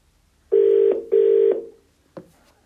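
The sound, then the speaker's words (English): Two loud, steady electronic phone tones sound back to back, each under half a second, followed by a short click, like a line being redialed after a dropped call. No one speaks. “The phone went out. I don't know what happened there.”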